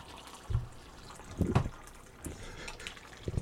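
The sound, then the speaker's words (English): Dark apple cider at about 147 degrees pours into a cup, a soft uneven splashing and trickling with a few louder gurgles, no voices. “as you hear it pour right into the cup.”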